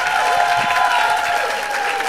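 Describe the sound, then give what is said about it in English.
A crowd applauds Ben and Brett Mazelius and Brian Tyler Cohen, a dense wash of clapping that holds at an even, fairly loud level for the whole two seconds, with no voices standing out above it. “Let's hear it. Let's hear it.”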